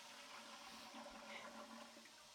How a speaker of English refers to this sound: And all I could hear was water flushing down the drain.